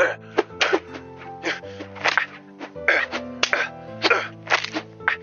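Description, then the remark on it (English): A rapid series of punching impacts, a dozen or so dull thumps and whacks landing in quick irregular succession, loud over a steady background of held musical tones. “Listen to us punching things.”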